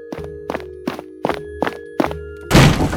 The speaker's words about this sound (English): I'll break the door down.